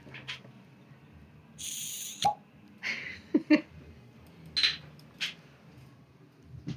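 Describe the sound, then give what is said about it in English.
Sake, pasteurized once and released in the fall, poured into a glass in a series of irregular hollow glugs and gurgles, with a brief splashy hiss early on, moderately soft over a low steady background. “Hopefully, listeners, you heard the delicious sound of pouring sake.”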